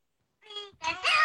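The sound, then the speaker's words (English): A short, squeaky Pikachu cry used as a quiz buzzer: a high-pitched, sing-song voice that starts with a quick chirp and ends in a louder, brighter call, heard alone. “This is the last chance saloon for Pikachu buzzer here.”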